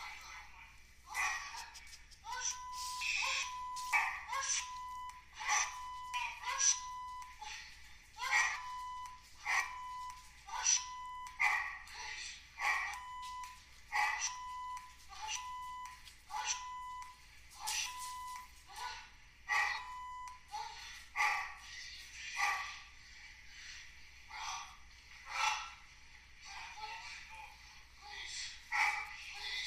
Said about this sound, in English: I know it might be hard to hear because of the dog.